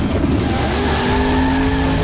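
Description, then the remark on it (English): A loud drag racing car engine roars continuously at drag races on the strip at the Glenwood Airport, its pitch climbing slightly, with a high screeching tire squeal layered over it for the whole two seconds. No one speaks. “Drag races at the Glenwood Airport on the Strip.”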